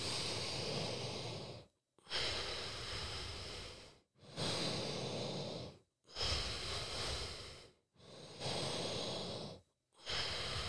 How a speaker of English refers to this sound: And then we're going to breathe in through the nose and out through the nose for 10 more breaths. So breathing in through the nose and out through the nose. Let's go.